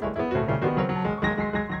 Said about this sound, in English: Is that pretty? Thank you very much. You're applauding, but that's not good piano playing. That's just banging out whatever I want to play.